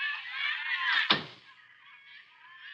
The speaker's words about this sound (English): Just hang on the phone a minute while I close the door here so as I can...